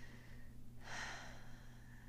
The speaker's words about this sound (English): Another one I teach my kids is, if you're breathing, you just slow down your breath and then you start counting down from 100 backwards. So just, you know, 100, take a breath.